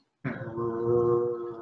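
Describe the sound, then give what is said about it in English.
A person imitates a low, quiet growl, one steady rumbling snarl that starts abruptly and holds for over a second, alone with no other sounds. “No, you do hear growling. Again, it's quiet, but just this.”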